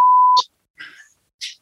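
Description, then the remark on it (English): A short, steady, high-pitched censor bleep cuts over a word, then clipped fragments of a voice follow with brief gaps between them. “The part where you beep out that aren't.”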